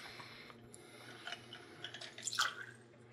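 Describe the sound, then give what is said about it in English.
A clear cocktail being poured evenly into six glasses, a soft, steady wet trickle with small splashes and a brighter burst near the end, fairly quiet, with no one speaking. “He's got a perfect pour here going on.”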